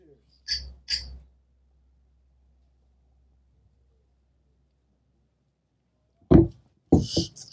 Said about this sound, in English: Two taps on that. Hey, cheers, fellas. Cheers.